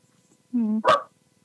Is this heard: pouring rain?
no